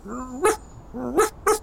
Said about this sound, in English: Momo barked and then added, No manners, this dog of yours.